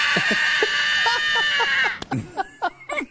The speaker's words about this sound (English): A primal scream he lets out. Kid just felt weird after dental surgery.